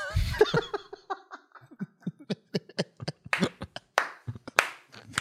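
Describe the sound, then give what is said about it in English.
Laughter opens, then sharp, uneven handclaps ring out, a sparse burst of applause lasting several seconds rather than a full roaring crowd. “That's an applause break right there.”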